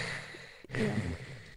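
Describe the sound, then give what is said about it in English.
A close, breathy exhale rushes into the microphone on a Zoom call after a brief pause, a single drawn-out, steady, controlled spacesuit-style breath with no talking. “Okay, so I'll get close to the mic. I don't know whether Zoom's going to cut my breathing out, but I'll do that sort of spacesuit breathing.”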